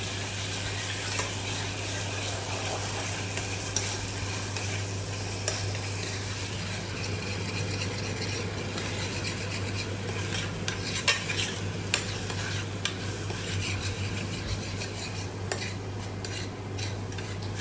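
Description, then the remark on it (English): Steady sizzling of food frying in heated oil in a pan over a low fire, with a utensil stirring and scraping now and then, occasional light clinks of metal, continuous, no voices. “once you heat up the oil, add a little bit of the low fire. Takes a little bit of patience as well for this to cook.”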